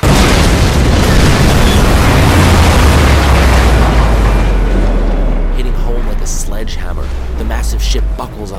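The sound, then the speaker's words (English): A massive, deep explosion roars and keeps rumbling for several seconds, a heavy low boom layered with a hissing, splashing wash of erupting seawater that slowly fades, as three torpedoes slam into the hull of the battleship Yamato at sea. “They cut through the sea and slam into Yamato simultaneously.”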